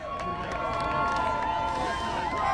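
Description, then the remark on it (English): A large outdoor crowd in Washington Square Park cheers and shouts on election night, around 2 or 3 in the morning, in a steady, dense roar, with many overlapping voices and whoops filling the space continuously. “He got there around 2 or 3 in the morning, and the crowd was still celebrating.”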